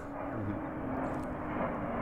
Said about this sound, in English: Not always peaceful and quiet though. We've got these airplanes moving over.